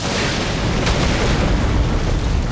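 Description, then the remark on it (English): A loud, sustained roar of thunder with deep, heavy rumbling and a sharp crack early on, as rain, thunder and lightning burst through a temple ceiling. It stays dense and steady throughout, with no voices. “Rain, thunder, and lightning burst through the temple ceiling, and the rubble crushed Kingu.”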